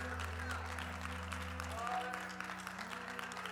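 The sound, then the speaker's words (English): An audience claps steadily together to praise the name of the Lord Jesus Christ, a dense, continuous patter of many hands, with a sustained low musical drone underneath and faint voices mixed into the crowd noise. “Come on, clap those hands and praise the name of the Lord Jesus Christ.”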